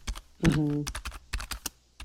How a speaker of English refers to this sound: Or like, what's the sound of someone who's making music on a computer with their headphones on? Yeah, there you go. Like, do you just hear the keys of the keyboard clunking and no sound to go along with them?